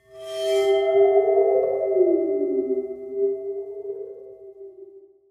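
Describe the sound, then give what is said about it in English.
An eerie, sustained metallic ring from a waterphone, a metal instrument with some water at the bottom, its pitch bending and wobbling downward and back as the water shifts, fading slowly over several seconds with no voices. “It's a water phone. Water phone, yes. Which is like this metal thing that has some water at the bottom of it.”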